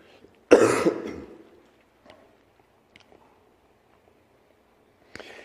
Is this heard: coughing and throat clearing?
yes